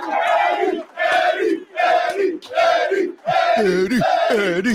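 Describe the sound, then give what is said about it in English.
A crowd yells and cheers loudly in a steady rhythm of about five chant-like bursts, ending with rising, wavering whoops layered over the roar. “Are they yelling?”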